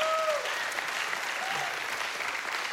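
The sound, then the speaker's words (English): An audience breaks into steady applause for the chance to go back and help at Westgate church, a dense, even wash of many hands clapping at once, holding a fairly constant loudness throughout with no voices standing out. “We can clap for that.”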